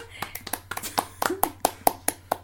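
Scattered hand claps in a quick, steady rhythm, about a dozen crisp slaps, sounding like just one or two people applauding a first joke rather than a full crowd, with faint vocal sounds underneath.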